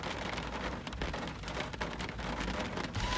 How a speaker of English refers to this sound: I don't want to go out there in the rain and the lightning.